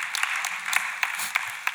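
An audience breaks into steady applause, a dense wash of many hands clapping with a few sharper individual claps popping out, held at an even, moderate loudness with no voices.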